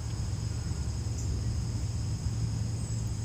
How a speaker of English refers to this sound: No bell today, just birds and wind.